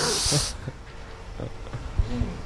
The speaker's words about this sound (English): I have to do a really loud audible sniff so I sniff better.